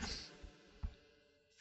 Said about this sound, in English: will close the door behind everybody.